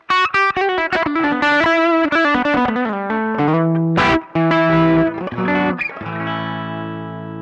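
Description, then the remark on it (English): An electric guitar played through a treble booster with the volume backed off further, giving a mild, crunchy overdrive, plays a quick run of picked notes and chords, ending on a sustained chord that rings out. Bright, no voices. “So the sound of this treble booster with the volume in different positions gives us so much options.”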